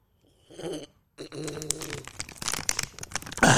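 A plastic water bottle crinkles and crackles in a burst of sharp, irregular pops while someone drinks, with brief low gulping sounds in between, ending in a louder crunch.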